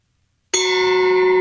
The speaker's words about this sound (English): That's a pretty good gong. Well, it's an actual gong. It'd be better with a softer mallet. Woo! Yeah, you'd get less ping and more boosh.